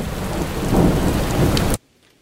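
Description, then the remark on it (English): A loud, steady downpour of heavy rain with a deep thunderous rumble underneath, continuous for under two seconds before cutting off abruptly into silence. “One minute it's pouring, and then it changes to a drizzle”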